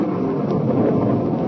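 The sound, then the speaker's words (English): A steady, loud rumble of thunder from a breaking storm as it starts raining rolls on without pause, a deep, dense roar with no voices over it. “And there's a storm, Jonathan! A storm's breaking! And it's raining!”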